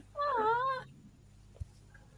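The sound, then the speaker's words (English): A freshly cleaned cat that has just arrived in the room gives one drawn-out, wavering meow, followed by near silence and a single soft thump, with no one speaking. “The now clean kitty.”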